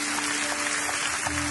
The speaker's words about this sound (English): And everybody who is ready to hear a word from God for your life today, I want you to clap your hands at every single location.